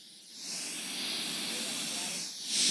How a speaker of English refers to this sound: You hear all that static? And so you would have to dial it in a little bit.